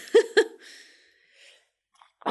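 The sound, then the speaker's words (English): A sneeze: two sharp, loud bursts in quick succession, followed by a trailing breathy hiss that fades out, then a sudden noisy burst at the very end. “Bless you. Excuse me.”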